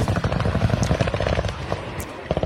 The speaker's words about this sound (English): Huh. That's a powerful drone.